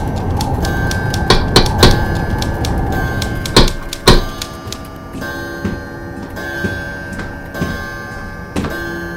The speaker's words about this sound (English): Ten minutes, waiting for the clock to strike.